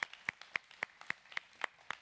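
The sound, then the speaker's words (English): A group applauds to welcome first-time guests, led by steady, evenly spaced sharp claps, about eight strong ones in two seconds, with softer scattered claps between them. Nobody speaks. “Could we give our first-time guests a round of applause?”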